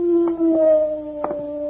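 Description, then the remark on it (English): A wolf howls on a dark night in a long, steady, drawn-out tone that holds its pitch throughout, with a few brief muffled bursts of noise underneath and no voices. “He's heading this way, Jingle. Get the horses. Maybe we can catch ourselves a wolf.”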